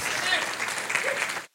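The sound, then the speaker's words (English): An audience gives God a hand clap during a morning church service, a dense wash of many hands with no clear beat, holding at a fairly loud level for about a second and a half before stopping abruptly. “Come on, let's give God a hand clap this morning.”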